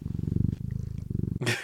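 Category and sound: animal, domestic cat purring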